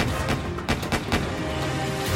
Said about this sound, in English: When the film ends, Dillinger and his companion leave the theater. Five shots ring out in the crowd.